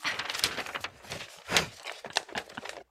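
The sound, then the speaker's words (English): Someone struggles to rip a piece of paper: a series of dry, crackly tearing and crinkling bursts, uneven in rhythm, with one louder rip partway through and no voices. “Can't rip a piece of paper.”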